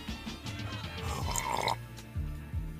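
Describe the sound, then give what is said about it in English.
Wet slurping of a hot coffee, a few noisy sips with liquid gurgles and a throaty swallow, with no talking. “I'm going to sip my coffee.”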